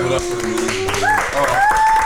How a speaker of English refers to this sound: Thank you. Let's clap it up for y'all.